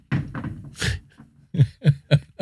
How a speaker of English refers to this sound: Dog playing with a loud, hard chew toy up there.